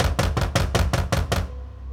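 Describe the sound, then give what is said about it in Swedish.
Seven hard, evenly spaced knocks in quick succession, loud, like a fist pounding on a wooden door, on a dark, windy night; then a low steady rumble lingers after they stop. “Plötsligt hörde hon hårda knackningar.”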